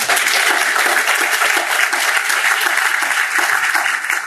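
A crowd claps steadily for a 20% increase in CPS graduation rates, a dense, sustained wash of applause at constant loudness for the full few seconds, with no voices rising above it.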